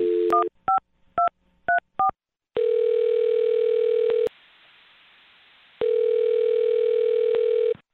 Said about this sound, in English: Well, I'm going to dial her phone number right now and see if we can get her on the phone and find out what happened, all right? All right. Okay, here we go.